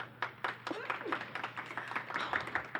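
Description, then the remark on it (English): An audience claps in scattered, uneven bursts of sharp hand claps, moderately loud, with a few voices calling out over the applause, clapping to vote for Uncut Joms in a matchup. “Okay, so if you would like to vote for Uncut Joms, please clap.”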